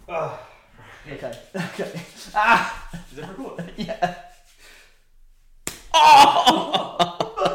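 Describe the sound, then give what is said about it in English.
After a stretch of talking and a brief pause, one person slaps another hard in the face with a single sharp, loud crack, followed at once by a startled vocal reaction and noisy commotion. “So I'm going to slap you in the face really hard.”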